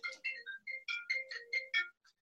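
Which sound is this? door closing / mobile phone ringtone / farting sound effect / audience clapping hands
mobile phone ringtone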